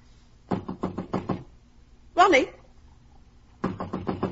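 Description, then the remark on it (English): A mother raps on a locked door in quick series of knocks, pauses for a short metallic rattle as the handle is tried, then knocks again in another rapid burst, fairly loud. “Why, it's locked. The door's locked.”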